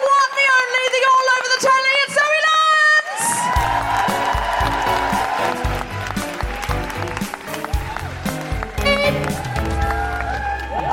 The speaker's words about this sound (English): And now keep that applause going.